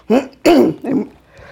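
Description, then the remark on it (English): Three loud bursts of coughing and throat clearing from a speaker during a speech, the first two strong and the third softer, spaced about a third of a second apart with no talking in between. “Theresa May gave a famous party conference speech when she spent the entire speech coughing, so I hope I won't be like that.”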